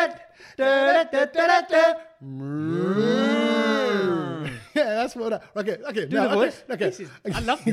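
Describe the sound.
Chatter gives way to one long, deep moo that swells and falls over about two seconds, then people start talking again right after it.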